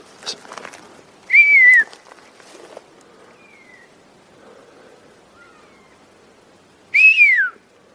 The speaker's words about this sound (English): Guys, they're going crazy with whistles. They're actually responding to me.